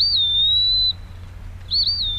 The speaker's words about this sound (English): The Eastern Wood Peewee.